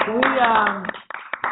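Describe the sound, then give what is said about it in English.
A voice speaks briefly, then a short, scattered burst of hand claps follows, a few sharp claps, like a small round of applause that quickly tapers off. “Round of applause for Marcus Graham Project.”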